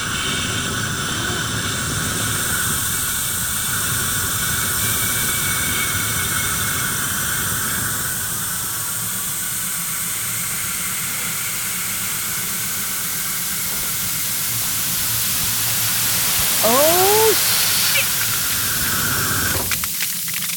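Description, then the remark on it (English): A loud, steady hissing spray from chemical ice grenades, thrown together on a count of three, pours out for about twenty seconds, broad and rushing, with a few brief rising whistle-like tones near the end and no talking. “Is that what I think it is? Chemical ice.”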